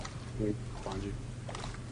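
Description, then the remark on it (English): Video game boat splashing through water, a steady rushing wash over a low engine-like rumble, with brief muffled voice fragments rising over it. “I'm right behind you guys, jumping in the water.”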